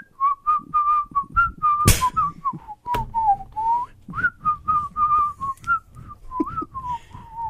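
A person whistles a bouncy pop melody up close, the clear notes hopping up and down in a steady rhythm, with a couple of brief sharp noise bursts partway through.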